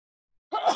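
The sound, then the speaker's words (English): A single loud sneeze bursts out suddenly after a moment of silence, a sharp voiced blast with a breathy, hissing edge that carries through to the end. “Bless you.”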